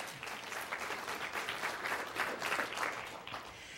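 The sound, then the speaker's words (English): A church audience bursts into steady applause during an announcement of the Petals for Preachers fundraiser to buy 5 bicycles for preachers in Africa, a dense wash of many hands clapping at an even, fairly loud level for several seconds, with no one speaking over it. “Now, personally, I think, yeah, go ahead and clap.”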